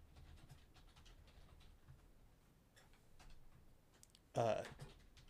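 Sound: loud keyboard typing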